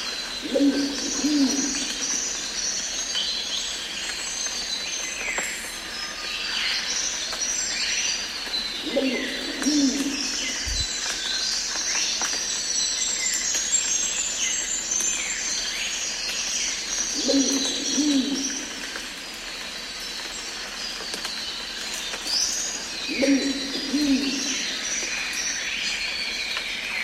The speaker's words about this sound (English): if you're not sure what a Wampu pigeon sounds like, here's a little snippet that I prepared earlier